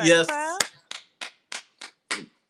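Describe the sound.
A brief voiced sound opens, then about six sharp hand claps follow in a steady, evenly spaced rhythm, each crisp and moderately loud with a short ringing tail.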